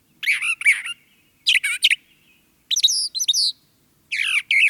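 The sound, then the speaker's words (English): A brown thrasher sings loud, clear phrases in four separate bursts, each made of rapid varied notes, with short pauses between them and no talking. “The Brown Thrasher's Never-Ending Songbook”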